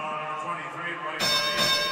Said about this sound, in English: Ooh, a 30-point bell. We haven't had one of those in a while.